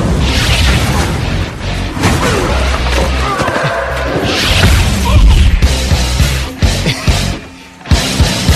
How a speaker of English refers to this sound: And it's just these whooshes. Yeah. just... It's and like little, like, laser sounds. Laser guns.